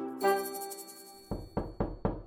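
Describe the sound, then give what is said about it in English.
Four firm knocks on a door in a quick, even rhythm, fairly loud, following a sustained musical tone that fades out just before the knocking begins. “Oh, hang on a second. That must be the doctor next door.”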